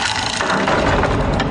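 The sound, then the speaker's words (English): A heavy old wooden door, newly delivered from Medieval Installers, creaks open in one long, loud, grinding groan, its rough ratcheting texture rising and warbling throughout with no voices over it. “Ah, my new door from Medieval Installers finally came.”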